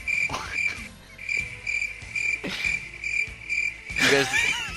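Crickets chirp in a steady, continuous high trill with a pulsing rhythm, fairly clear, and a short warbling call breaks in near the end.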